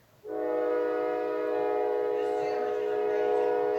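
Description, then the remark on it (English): A train horn at a railroad track in Clear, Alabama sounds one long, loud, steady blast that starts abruptly and holds for several seconds, a rich, buzzing chord continuing to the end. “Still a train break.”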